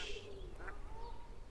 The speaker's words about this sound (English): Oh, they float, don't they? Yay! They float better. And all the ducks are going to come over now. Yay! Ooh, they like those oats.